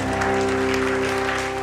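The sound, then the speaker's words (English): A church audience claps together for the Lord in a steady, dense burst of applause during a worship service, loud and continuous over a sustained organ-like chord humming underneath. “Give the Lord one more clap in the house today.”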